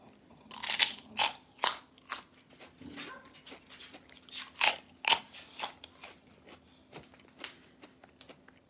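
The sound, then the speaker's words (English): Loud crunching of Lowry's Bacon Curls hot and spicy microwave pork rinds, a quick irregular series of sharp brittle crackles and bites over several seconds, with a faint steady hum underneath and no talking. “Real crunchy. Kind of has a bacony smokiness to it.”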